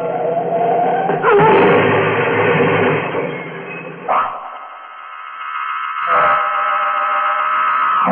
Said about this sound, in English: I was conscious again. I'd slid forward under the wheel when the car hit the tree. Pulled myself up, got out of the car. Look, it wasn't damaged bad. The bumper taken most of the shock when we hit. One fender was crumpled.